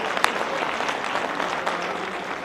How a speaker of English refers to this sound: High five them and give them a round of applause.